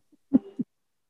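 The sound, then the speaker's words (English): One short, muffled cough on its own, a throaty voiced burst with a second smaller pulse at its end, preceded by a faint brief sound. “No, I was coughing.”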